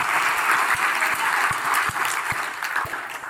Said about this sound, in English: Now we clap.